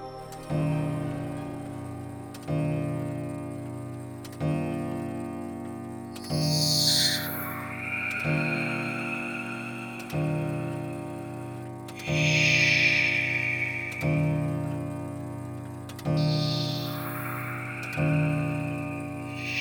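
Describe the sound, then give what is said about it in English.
A clock's deep bell strikes twelve slowly and evenly, each chime ringing out and fading before the next, while a wavering, owl-like whistle rises over several of the strokes. “as he looked warily around, clutching his covers tight, he heard the clock strike 12.”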